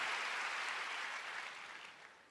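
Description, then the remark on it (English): An audience claps for the Lord in a dense, sustained burst of applause, a crackling wash of many hands that holds steady and then eases off slightly toward the end. “Give the Lord a big clap tonight.”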